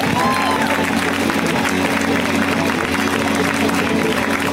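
Sustained, loud applause from an audience welcoming a female stand-up comic visiting LA to the stage: dense steady clapping mixed with cheering voices and a low hum beneath, with no pause or fade.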